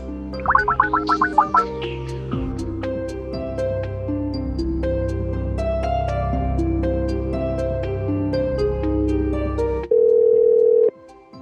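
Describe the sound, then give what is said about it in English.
A phone call being placed to Victor Garber: a quick run of short electronic dialing beeps, then a long steady ringing tone with tinkling notes over it, ending in a brief flat, loud tone. No one speaks. “I'm going to call Victor Garber for the Juicebox Podcast.”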